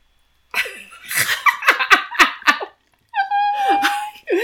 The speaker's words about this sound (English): It's because I'm wrestling the dog to keep her calm down.